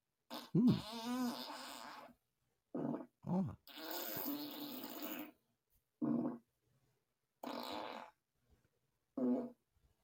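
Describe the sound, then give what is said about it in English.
A string of about seven loud farts, some long and rumbling, others short and sputtering, separated by brief silences, with no talking. “I'm just a little gassy. Oh, you guys can hear that?”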